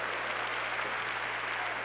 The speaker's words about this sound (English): Why don't everybody clap your hands to the Lord together and thank him out of your heart for his faithfulness?